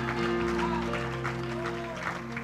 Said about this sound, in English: Give the Lord a hand clap of praise. Hallelujah. Lift your voice and give him a shout. Hallelujah.